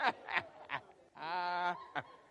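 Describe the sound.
A person imitates a chicken: three quick, nasal clucks, then a long drawn-out squawk, ending with one more short cluck.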